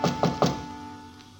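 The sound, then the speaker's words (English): Three quick, evenly spaced knocks on a wooden hotel room door, solid, followed by a quiet pause with no answer. “She does not answer the door.”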